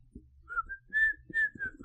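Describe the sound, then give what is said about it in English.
A person whistles a short, wavering tune of a few sustained notes, moderately loud, with faint low thumps and rustling underneath and no talking. “Or wait, I forgot to do the whistle part.”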